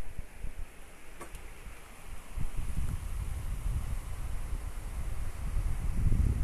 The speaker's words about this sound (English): All that just started. It's pouring down rain now. It smells so good. I love the smell of summer rain.